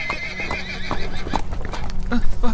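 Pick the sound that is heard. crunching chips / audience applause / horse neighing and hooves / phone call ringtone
horse neighing and hooves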